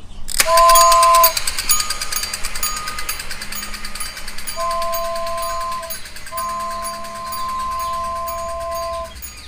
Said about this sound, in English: we will need to take the toy train, Baba, as the big animals are towards the end of the zoo.